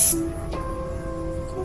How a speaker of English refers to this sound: and come down this morning to it exploding, this foam out of it, you can see it's constantly bubbling. Look at it. What the heck? What kind of watermelon did you get? Ew, look at it. It's deflating. Yeah, it's just straight water.